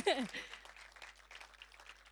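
A crowd applauds with steady, dense clapping that stays fairly even throughout, opening with a brief vocal cheer or whoop at the very start.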